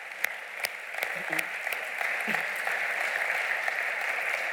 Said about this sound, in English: So we want to applaud you and we want to cheer you on. So thank you so much for sharing your story tonight.